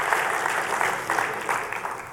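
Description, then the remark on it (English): An audience applauds steadily for the worship team as it comes out, a dense wash of hand claps holding at a fairly even loudness for the whole couple of seconds, with no voices standing out. “Let's give it up for them.”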